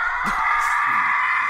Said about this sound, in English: It's very recognizable. Everybody loves that sound. Well, so there are two, like, real recognizable screams. And maybe there's more, but these are the two that I'm aware of, I guess. There's two big ones. There's the Howie Scream, which is this one.